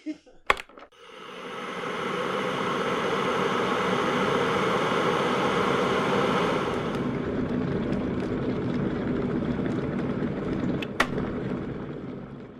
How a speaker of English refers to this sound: The kettle has just finished boiling.